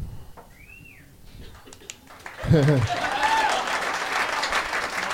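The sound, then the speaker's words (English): After a quiet start, a burst of applause breaks out and carries on steadily to the end, with a short whoop and a thin rising whistle over the clapping. “Very interesting statement to applaud.”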